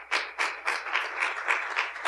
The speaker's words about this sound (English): So again, by your applause, you guys get to choose which one you want to hear. So number one, about why even bother to pray, let's hear by applause on that one.